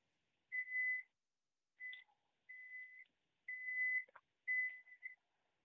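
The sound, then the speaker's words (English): A run of five steady, high electronic beeps, each about half a second long with short gaps between, sounding alone with no one speaking, from a microwave oven heating porridge. “Is that your microwave? Are you heating something up?”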